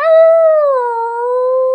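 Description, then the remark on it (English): A single long, loud coyote howl, holding a steady tone before sliding slightly lower and sustaining to the end, with no other sounds around it. “A fiddler played loud and howled at the moon,”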